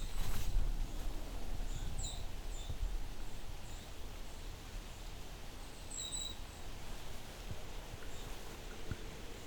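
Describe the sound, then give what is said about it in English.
Very high, thin triple call notes from a golden-crowned kinglet in a vineyard region come in two brief clusters of a few notes each, faint against a soft outdoor background hiss. “There's a golden crown kinglet, a triple ring.”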